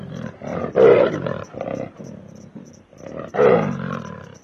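A lion roars twice, loud, each deep, rumbling bellow swelling and then trailing off into grunting breaths, with a short pause between the two roars.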